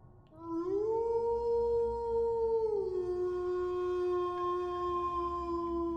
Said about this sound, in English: A barking, drawn-out howl, similar to many other tapes I've heard, only a much better quality and no barking dogs.